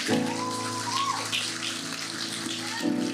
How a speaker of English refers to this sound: Give amen. God a round of applause. Dale a Dios un fuerte aplauso.